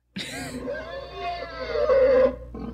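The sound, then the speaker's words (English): A person vocally imitates their old computer struggling like a car revving up: a strained, droning moan that rises and swells in pitch for about two seconds, then cuts off, followed by a brief grunt. “It truly sounded like a car. It would heave. Revving up. What did it sound like? It sounded like this.”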